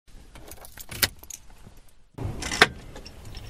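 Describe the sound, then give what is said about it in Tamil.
Keys jangle in bright metallic bursts as they are taken from an auto-rickshaw, one sharp rattle near the start and a louder, denser shake later, over a low engine-like rumble with no talking. “ஏய் என்ன சவுண்ட் ஜாஸ்தியா இருக்குது, டேய் ஆட்டோல இருந்து சாவி ஏறலாம்.”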